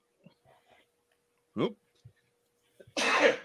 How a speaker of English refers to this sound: Wow. Bless you. Sorry about that. Couldn't hit the mute button in time.